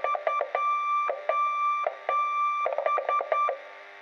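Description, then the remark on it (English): Morse code SOS tapped out in electronic beeps: three quick short tones, three longer ones, then three short again, a steady mid-high pitch sounding on its own with no talking. “That, of course, was the Morse code signal for SOS.”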